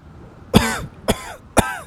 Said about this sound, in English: … coughed up some sand.